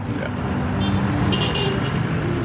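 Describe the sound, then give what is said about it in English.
Dense, steady road traffic roars on the island of Bali, with engines rumbling continuously and a brief high tone like a horn cutting through midway; faint voices may be buried in the din. “It's really huge, because you see the traffic, how crazy it is.”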